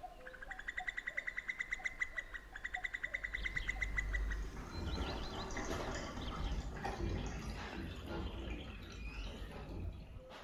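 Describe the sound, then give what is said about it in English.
A cuckoo calls repeatedly in the first few seconds over a rapid series of high, bright bird notes, before the scene gives way to a denser, noisier outdoor wash. “And up in the nursery an absurd little bird is popping up to say cuckoo. Cuckoo. Cuckoo.”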